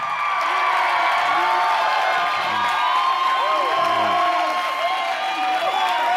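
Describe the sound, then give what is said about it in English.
An audience at a Young Adults University gathering cheers and applauds steadily, with a dense wash of clapping and overlapping shouts and whoops, loud and sustained throughout. “I don't think that applause is deserved, but I appreciate it.”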